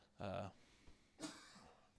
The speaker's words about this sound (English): Man, you need like a lozenge or something? You've been coughing it up. Well, I mean, I'm just getting over a cold. So, yeah, I'm sorry about the coughs.